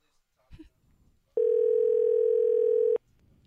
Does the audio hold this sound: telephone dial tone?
yes